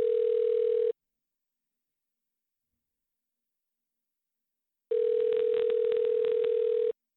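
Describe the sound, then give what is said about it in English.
Two bursts of an outgoing phone ringback tone while calling a friend, a steady electronic hum sounding for about a second, then silence for four seconds before ringing again for two seconds, clear. “Well, let's call my friend.”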